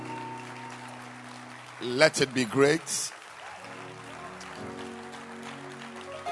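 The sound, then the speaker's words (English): A short, loud burst of crowd hand clapping breaks out in the middle, bracketed by a man speaking before and after, who asks for loud hand clapping and then begins a morning prayer. “So let your hand clap be loud.”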